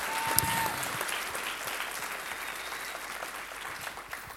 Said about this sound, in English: As we close, can we give a round of applause to our panelists one more time?